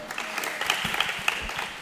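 A short burst of applause from a group for a person called up to the front, dense overlapping claps forming a steady crackling wash at moderate volume, with a few sharper individual claps standing out.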